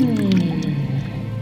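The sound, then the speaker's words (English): Soft sloshing and squishing of water as a body shifts through a warm hot spring, with faint drips over a steady low hum, continuous and fairly loud for its brief length. “Dip lower in and let it envelop you. How did you come to find this hot spring?”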